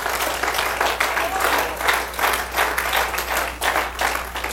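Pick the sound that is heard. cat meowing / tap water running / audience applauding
audience applauding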